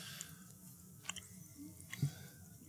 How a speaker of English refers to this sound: He's still chewing on it, on the one that he ate. He ate another one when I wasn't looking. I think we're witnessing him breaking it down. So he's mulling it over. He is mulling it over.